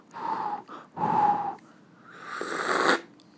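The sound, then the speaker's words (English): Someone blows on hot raspberry decaf tea in three breathy puffs, the first two short and rushing, the last one longer and more hissing. No one speaks. “Hear that blowing on the tea?”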